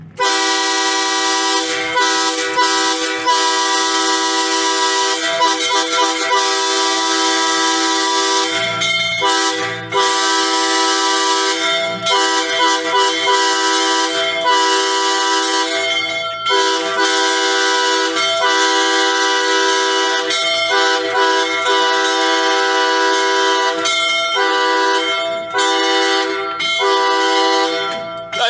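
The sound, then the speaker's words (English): A loud, sustained factory whistle horn blares steadily for nearly thirty seconds, its rich harmonic tone holding nearly unbroken with only brief dips, no voices present; a 5 o'clock whistle blown in Astoria. “Oh, is that all the louder their whistle is?”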